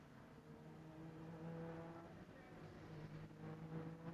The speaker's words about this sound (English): Engine notes beginning to pick up. They're on the back straight, if you will, heading down towards turn number 10 in single file. So it is going to be a single file restart after a 40 minute or thereabouts red flag